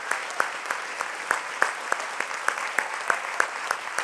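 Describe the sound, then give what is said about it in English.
A worship audience applauds as a clap offering to the Lord, steadily, with a few sharper claps standing out at a quick, uneven rhythm over a dense wash of many hands clapping at once, moderately loud. “But let's lift up a clap offering to the Lord right now.”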